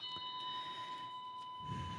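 A 3-minute timer alarm rings with a steady, high electronic tone held at several pitches for the full two seconds, fairly faint over a low background rumble, with no one speaking.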